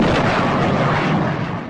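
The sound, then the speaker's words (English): A loud sonic boom blasts in at full force and rolls on as a dense, roaring rumble for under two seconds, fading only slightly at the end, with no voices. “Sonic booms not included with the Sonic Baitfish strike unless you are fishing for jet fighters.”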